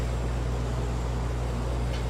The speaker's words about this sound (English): I'm sorry, the air conditioner just turned on. Let me see if I can turn it off. There we go. That might be a little bit better.